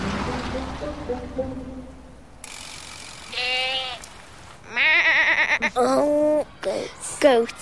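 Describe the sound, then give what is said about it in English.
Several goats in Llandudno, Wales, bleat in loud, wavering calls, overlapping near the end, after a stretch of low rumbling background noise with a faint hiss like light rain. “Goats. Goats.”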